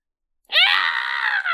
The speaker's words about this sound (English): And in that door to your right, you do hear screeching. Ah! It sounds like pain, but it doesn't sound human.